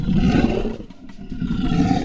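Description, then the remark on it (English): A lion roars loudly, a deep rumbling growl that dips briefly in the middle before surging back for a second sustained bellow, with no talking. “Who wouldn't want to be a lion?”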